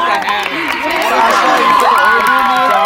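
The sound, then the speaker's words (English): A dense crowd of children shriek and shout, high overlapping voices filling the air continuously without pause, loud and chaotic like a busy playground. “They're screaming quite loudly.”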